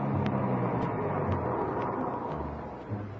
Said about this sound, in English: A few minutes later, Mr. Sullivan came out, got in the car, and we drove off. At 5:03, we pulled up at the meeting place in Elysian Park.